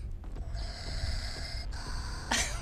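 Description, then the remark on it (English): A voice imitates a Sith Lord's heavy respirator-mask breathing: one long, raspy, hissing breath, ending in a sharper, breathy burst. “The Sith Lord's breasts are breathing.”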